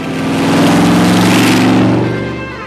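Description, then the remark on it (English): The powerful V8 engine of a Shelby Cobra car rumbles, its deep throaty growl swelling as it revs up and then easing back down over a few seconds, with no talking. “Well, there it is. Yeah. Well, it's a cool car.”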